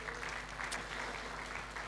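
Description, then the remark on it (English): A round of applause for a man at a church: many hands clapping in a dense, steady patter that holds at an even, moderate level throughout, with no voices on top. “Yeah, he deserves a round of applause.”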